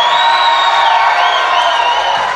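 A live audience at the People's Improv Theater gives a loud, sustained roar of cheering that fills the whole moment, with high whoops and whistles rising and sliding over the dense wall of voices.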